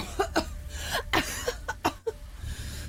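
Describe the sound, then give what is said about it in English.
A rapid series of harsh coughs and sputtering gasps from a young girl who has just run out of a blaze, about eight short bursts in quick uneven succession over a low background hum. “definitely fear in her eyes as she just barrels out and is just coughing and spluttering a couple of feet away from the blaze and just...”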